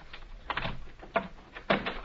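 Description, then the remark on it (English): The door to a doctor's room in a house being unlocked and opened: a few sharp metallic clicks and rattles from the lock, then the scrape of the door swinging, fairly quiet with no voices. “Unlock the doc's door”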